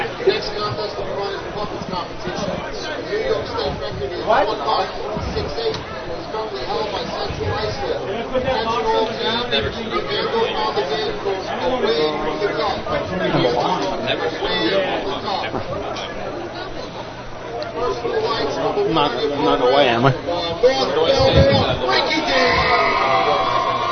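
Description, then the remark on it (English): A big outdoor crowd at a race, out from under the tents, cheers on North Belmore and chatters in a dense, steady roar of overlapping voices, with scattered shouts and whoops, swelling louder again toward the end. “Big crowd has woken up and come out from under the tents for North Belmore, cheering on their heroes”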